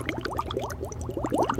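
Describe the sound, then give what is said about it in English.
A voice imitates water bubbling: a quick, steady run of small rising blub-blub sounds, moderately loud, ending with a slightly stronger pop. No words are spoken. “Those are bubbles, by the way. I get, like, bubbling.”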